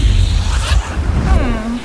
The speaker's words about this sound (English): So, this is Lafrisia? It's cold and wet. That's the waterfall.